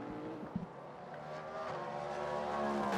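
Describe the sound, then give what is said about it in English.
A loud race car engine drones steadily with a strong harmonic whine, swelling slightly toward the end, with a brief thump early on and no one speaking, as Nick Yellerly's car crosses the line and completes another lap of the track. “Crosses the line now, clicks off another lap.”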